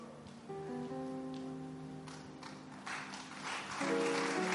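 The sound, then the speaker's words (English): Thin, scattered audience clapping during a preacher's talk on Jesus' resurrection builds up over sustained keyboard chords, staying fairly soft and unenthusiastic before swelling slightly at the end. “Yeah, I'll give you another chance to clap better.”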